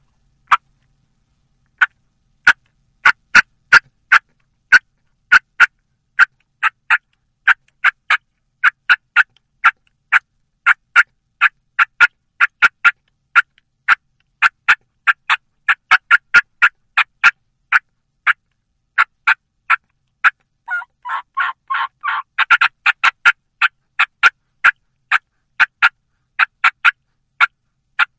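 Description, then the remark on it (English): A turkey call imitates an excited hen cutting: sharp, loud clucks in an irregular, rapid rhythm for nearly half a minute, with a short run of yelps near the end. No one speaks. “Again, that was a series of cutting of an excited hen, throwing a few yelps in there.”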